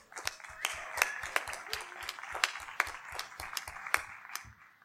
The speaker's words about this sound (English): Can I get a big round of applause for Dr. Marlene Tromp, please?